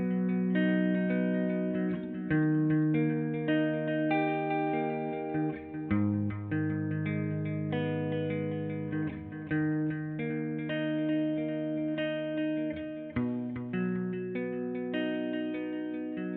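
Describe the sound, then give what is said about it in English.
An electric guitar plucks chords one note at a time in a steady arpeggiated pattern, a light delay trailing each note, played alone at moderate volume. “The next guitar plucks the chords in arpeggiated pattern with a light delay effect.”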